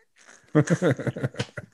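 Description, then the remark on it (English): A voice imitates a dial-up modem connecting: a rapid run of buzzy, warbling chirps and hissy screeches, starting faint and then loud for about a second and a half. “I was going to say, I can remember being in our house and hearing my dad turn on the internet.”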